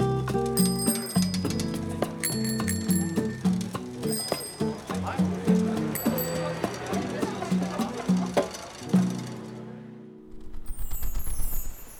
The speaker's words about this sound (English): In a place called Amsterdam, Tiny Owl saw loads of bikes. Ting ting, they went past, ting ting, all alike.